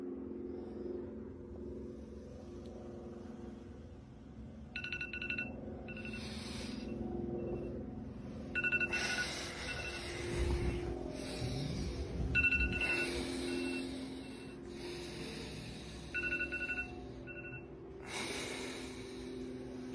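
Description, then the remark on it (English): A voice auditioning for the role of a smoke detector mimics it with shrill, high-pitched beeps that come in short, irregular bursts, mixed with loud breathy huffs and snorting noises, with no one speaking. “today I will be auditioning for the role of Smoke Detector.”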